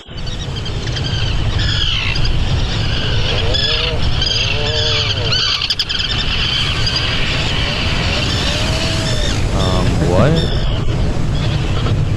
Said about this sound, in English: But then there's like a bunch of other videos in this Atlantic article saying like, here are puffins sounding like chainsaws. Let's take a listen to that.